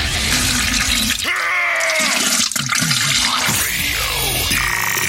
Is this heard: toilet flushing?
yes